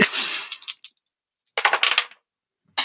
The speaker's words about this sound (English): And I just threw one of my dice across the room. I heard it. That was like an amazing ricochet moment.